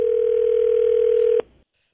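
A steady, loud telephone dial tone as a phone call is placed holds one pitch for over a second, then cuts off sharply with a click, leaving a brief faint hiss before silence.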